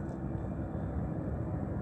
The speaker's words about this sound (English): Helicopter.